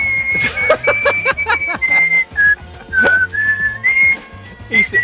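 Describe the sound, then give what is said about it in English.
Someone whistles a bright, bouncy tune, with short notes shifting in pitch over a few seconds, alongside brief bursts of background noise and faint chuckling. “You're good at the whistling.”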